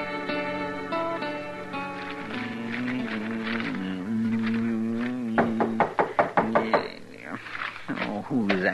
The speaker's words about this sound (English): I never heard of nobody knocking on this door before.